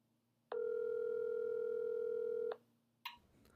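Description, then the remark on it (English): A steady, loud telephone dial tone hums for about two seconds while a call is being placed, then cuts off abruptly, followed by a brief click and faint rustle. No one speaks. “Yo, I'm calling.”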